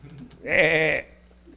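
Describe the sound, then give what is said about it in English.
A single short sheep bleat, a wavering, quavering cry lasting about half a second, heard on its own against a quiet background and not especially loud. “They have, they, like I said last week, they don't even have a loud cry.”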